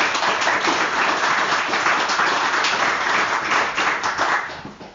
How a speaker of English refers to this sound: Round of applause